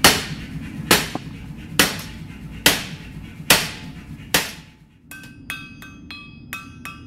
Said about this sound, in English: Once it glows, he picks up a hammer and starts to shape it by hand.